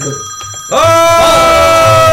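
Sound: telephone ringing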